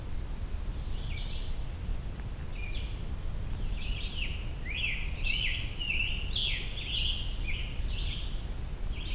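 A scarlet tanager sings a string of hoarse, burry phrases in quick succession, over a steady low rumble of background noise with no talking.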